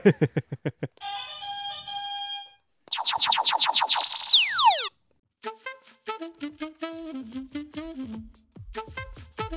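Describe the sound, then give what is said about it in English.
A string of electronic game buzzer effects during a Bible trivia game, with no talking: quick rapid beeps, a steady harmonic drone, a loud falling whistle sweep, then a run of bouncy, wobbling tones. “Well, I mean, I think it's just the fact that it's a fun buzzer sound.”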